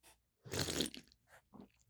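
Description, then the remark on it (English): A loud slurp as someone sips a beer, followed by a few softer wet mouth sounds and swallows. No one speaks. “Slurpy. Get that slurp in there. Slurp juice.”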